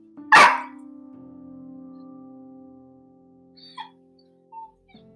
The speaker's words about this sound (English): Ignore the puppy in the background.